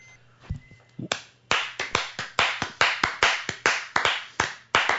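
Applause: after a faint tap or two, sharp hand claps start and continue in a quick, steady rhythm, loud and crisp, with no talking over them.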